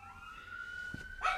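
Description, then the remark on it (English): A passing emergency vehicle siren near a hospital holds a steady, high wailing tone at moderate volume throughout, and a single dog bark breaks in near the end. “Yes, dude, they drive by all the time. Like, we're close to a hospital.”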